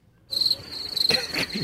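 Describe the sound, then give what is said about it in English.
A crickets sound effect is played: crickets chirping steadily in a high, sustained trill that starts abruptly and continues throughout, with a few faint rustling or thumping sounds in the background. “Oh, yeah, play the crickets again.”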